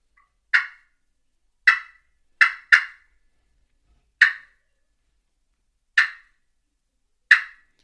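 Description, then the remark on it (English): Seven sharp, clipped turkey putts, an imitated alarm call, sound alone at an irregular pace, with two coming close together. Each note is loud, abrupt and quickly fading, with silence between. “I know it doesn't sound like it, but I'm just doing some clucks. But putt, I would be.”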